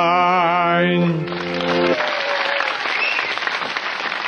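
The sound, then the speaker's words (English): A brief sung, warbling tone gives way to a loud burst of studio audience applause, dense steady clapping that fills the last three seconds before easing slightly. “Well, the audience were impressed.”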